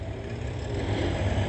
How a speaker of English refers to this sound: All right, this large truck. AJ92454, CIE Trucking Inc. That's CIE Trucking Incorporated.